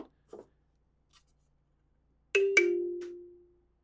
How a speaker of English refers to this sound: Yeah, there's somebody at the door. That didn't sound like somebody at the door. That sounded like somebody, like your kid was hitting the table while you were eating dinner. This is somebody at the door.